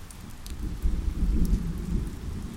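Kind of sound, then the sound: nature, rain and thunder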